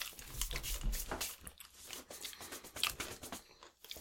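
food or drink, crunching

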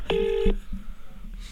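signal or alarm, telephone dialing tones

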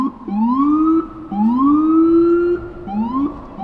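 vehicle, police car siren wailing

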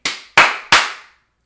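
human body sound, single loud hand clap

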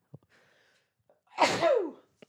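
human body sound, sneeze

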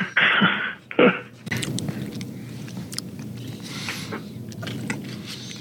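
food or drink, chewing

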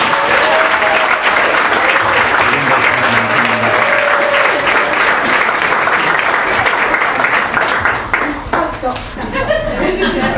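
crowd, audience applause

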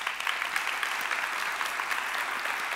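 crowd, applause

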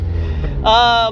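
vehicle, car passing by

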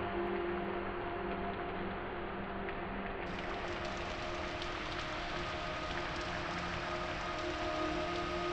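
nature, rain falling

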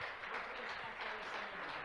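crowd, audience round of applause

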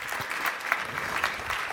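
crowd, audience applause

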